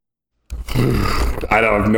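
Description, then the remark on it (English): A person vocally imitates a young elephant, starting after a brief silence with a rough, growling roar that rises into a strained, trumpeting tone, loud for about a second and a half. “So the voice for this. I'm going to go the young elephant from Jungle Book.”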